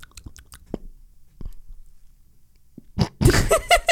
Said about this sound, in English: Sorry. I had a hiccup. Don't look at me like that. I had a hiccup.